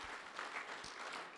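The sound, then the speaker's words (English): An audience at One Heart claps in a sustained round of applause to show they are having a good morning, a dense crackle of many hands at a steady, fairly loud level throughout, with no voices standing out. “How about we give a round of applause if you are having a good morning? I can hear it.”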